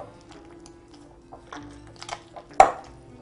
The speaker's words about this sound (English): All right, now it's starting to look like a more proper dough. And as I said, we just have to keep kneading this for a while.